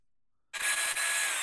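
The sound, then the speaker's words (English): After a moment of silence, a power drill kicks in abruptly and runs loud and steady, a harsh, hissing grind with a few faint low knocks underneath, lasting until the end. “You just need use the drill the whole time.”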